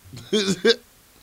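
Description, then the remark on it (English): A short burp breaks out in two quick voiced pulses, the second briefer than the first, with nothing else around it and no talking. “Let me make sure I get this burp out.”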